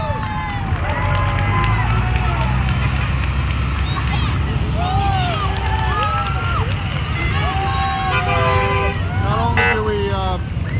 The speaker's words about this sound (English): And as you can see, you might want to take a picture of the bus coming out. It's full of toys for the kids. Two buses stuffed with toys.